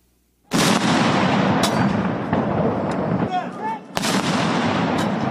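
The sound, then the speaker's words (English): Two heavy cannon blasts fired by members of Japan's Self-Defense Forces in a 19-gun salute at the state funeral of former Prime Minister Shinzo Abe in Tokyo, each a loud boom that rolls into a long, echoing rumble. The second shot lands a few seconds after the first. “Members of Japan's self-defense forces fired cannons in a 19-gun salute as Abe's widow, Aki Abe, carried the late leader's ashes to a funeral ceremony.”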